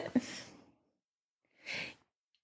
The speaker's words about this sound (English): Were you going to say something? No. You breathed like you were going to say something. I was just breathing.